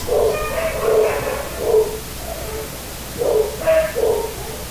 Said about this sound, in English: Sounds like you got a dog that's got some stuff to say about that. Yes, I'll let them speak.